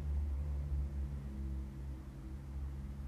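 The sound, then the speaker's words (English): A steady low rumble of traffic hums throughout, like cars going by in the background, fairly quiet and continuous with no voices. “Y'all are going to hear cars in the background.”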